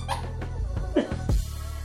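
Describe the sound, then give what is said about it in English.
A few short squeaks from a rubber squeaky toy, irregular, over a low rumbling background with some faint dog sounds. “You can't be squeaking during the podcast.”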